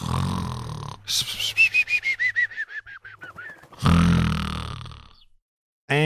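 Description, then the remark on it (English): Someone fakes a snore: a loud rasping inhale, then a quick run of about a dozen whistling pulses sliding downward in pitch, and another harsh snorting breath. “Did I not snore, or did I snore?”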